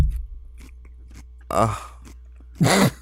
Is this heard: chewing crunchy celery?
yes